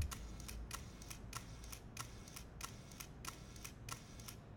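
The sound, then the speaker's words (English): The shutter of an original M9 Monochrom digital rangefinder camera fires again and again in a quick, steady burst until the camera's buffer fills, each crisp mechanical click sharp, about a dozen in all over a faint low hum, with no talking. “I may be boring to sit and listen to the sound of a shutter”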